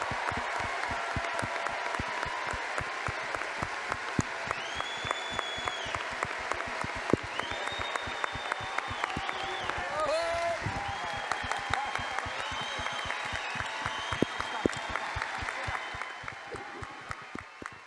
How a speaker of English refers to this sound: Anthony, I, you're very humble, but you have been here from the beginning, and I think Anthony Daniels deserves a huge round of applause.